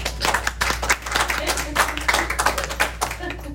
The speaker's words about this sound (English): Well, thank you. A round of applause is in order.